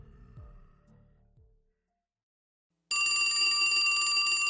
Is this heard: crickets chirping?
no